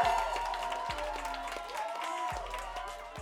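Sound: round of applause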